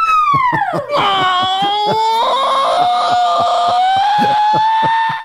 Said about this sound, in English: That's why we got that scream in there.